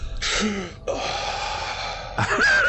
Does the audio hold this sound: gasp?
yes